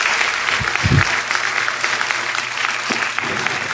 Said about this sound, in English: All right. Great. Good job. Give those guys a big hand of applause.